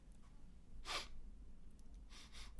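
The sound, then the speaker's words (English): Someone sniffs the air to check a faint smell of cheap aftershave: one short, sharp inhale through the nose, then after a pause a longer, slightly broken sniff. Soft, over a low background hum, with no talking. “Just have a sniff, will you?”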